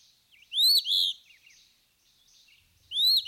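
A phoebe calls alone, a loud, clear two-part phrase near the start, softer chirps and twitters after it, then the same bright call returns at the end.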